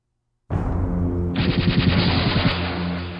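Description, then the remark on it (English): A particle cannon shot, fired across the Rio Grande, erupts suddenly out of silence, loud, swelling into a rapid rattling, pulsing roar that holds steady for a few seconds without any voices. “I grinned as the shot from my particle cannon crossed the Rio Grande, the shockwave slicing through the water before smashing into the immense 10-gallon hat on the head of the 30-foot-tall mechanoid there.”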